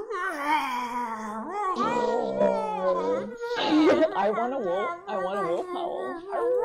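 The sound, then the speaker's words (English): Several people vocally imitate lion roars and wolf howls, overlapping long, wavering howls with rising and falling pitch, joined by rougher roar-like shouts, loud throughout. “Let's get some lion roars going.”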